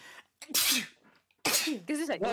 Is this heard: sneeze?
yes